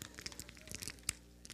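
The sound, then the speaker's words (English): Paper rustles and crinkles in quick, irregular bursts, with one sharper crunch near the end, as sheets are passed around to everyone. “All right, everybody get some paper.”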